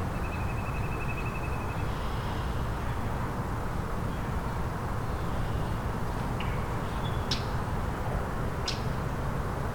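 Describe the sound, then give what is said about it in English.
A northern flicker's rapid, even series of calls rings out faintly for about two seconds over steady rushing background noise, followed later by a few brief, sharp bird chirps. “Northern flicker is very vocal today.”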